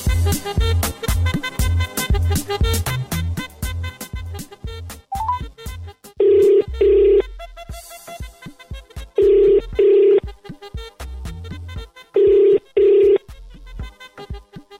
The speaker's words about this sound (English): I'm gonna dial Cape Town right now and see who is on the other side of the phone.